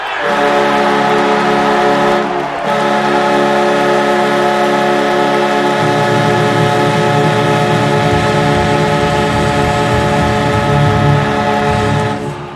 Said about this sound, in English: And the big difference there is that at the American Airlines Center, with 18,000 people on their feet going nuts, the horn still dramatically overwhelms the sound of the crowd. It's just incredibly loud.